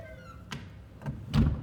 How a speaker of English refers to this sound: Come in. You sent for me, Chief. I did. Close the door